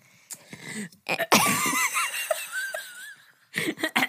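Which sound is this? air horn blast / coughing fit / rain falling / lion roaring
coughing fit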